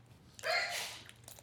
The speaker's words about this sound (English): God bless you, babe. Bless you.